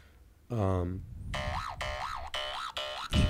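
A timer goes off with a quick downward boing, then four loud electronic bursts, each warbling up and down in pitch, repeating in a steady rhythm.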